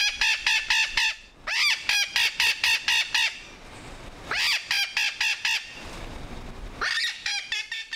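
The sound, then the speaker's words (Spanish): Captive Puerto Rican parrots at El Yunque calling in loud, harsh bursts of rapid squawks, several notes at a time, with occasional rising screeches between the runs and no talking. “el yunque, cotorras en cautiverio.”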